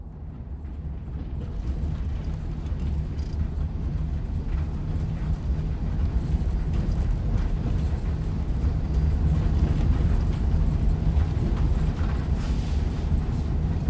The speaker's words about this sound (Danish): Ja, vi sidder i bussen. Vi er på vej mod Odinteatret. Det her er Forfatterskolens Danmark rundtur.